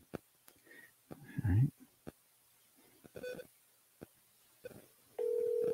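A run of short, sharp telephone keypad tones tapped out at an uneven pace, clear, as a phone number is dialed, followed by a steady electronic phone tone that holds to the end.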